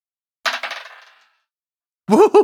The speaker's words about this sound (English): Okay, so you roll your attack dice, and then you roll it again.